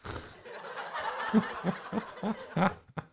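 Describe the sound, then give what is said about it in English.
A canned studio audience laughter sound effect plays as a short burst of crowd chuckles and snickers, rising in several rhythmic pulses over about three seconds, moderately loud with no talking. “These effects are fun. What else is on here? That's our studio audience.”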